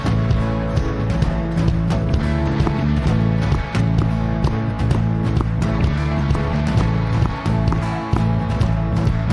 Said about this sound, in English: Let's sing this song. We're going to thank Him, and we're going to clap, and we're going to make some noise, amen?